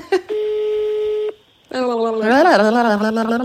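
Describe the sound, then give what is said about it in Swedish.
A single long, steady ringback tone from an outgoing phone call, clear, stops abruptly; after a brief pause a voice starts talking loudly. “Jag hatar när vi ringer henne och hon inte svarar för det är så jobbigt att klippa.”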